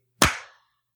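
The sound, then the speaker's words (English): Several people on a Skype call try to clap together on a count of three: a single sharp hand clap, or a few claps landing almost together, forming one loud burst with a short ringing tail that fades within half a second. No one speaks. “Did we have two claps? Was there two?”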